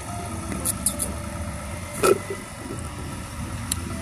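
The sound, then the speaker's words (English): The engine of a big semi truck carrying pet food rumbles steadily at idle, with a few brief clicks and a short louder knock partway through, and no one speaking. “There's a big semi truck for the Pet Food Express.”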